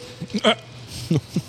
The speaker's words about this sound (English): Spicy food makes me hiccup, for the record.